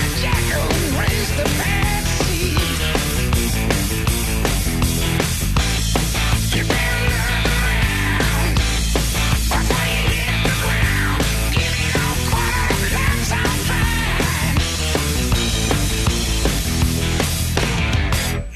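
A loud, dense hard rock song plays continuously, with driving drums, heavy distorted guitars and a strong bass line under a sung vocal, steady and full from start to finish.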